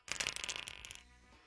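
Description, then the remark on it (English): Dice are shaken and rolled onto a surface to set a player's handicap, a quick burst of clattering, a dense rattle lasting about a second before fading into quiet room tone; the roll comes up 9. No one speaks. “Then whatever he rolls, we add on to 18.”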